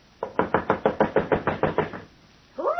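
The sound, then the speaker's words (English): Rapid, loud knocking on a fortune teller's wooden door at 9:30: about a dozen quick, evenly spaced raps, followed after a short pause by a voice starting to speak. “You knock like the very devil's behind you.”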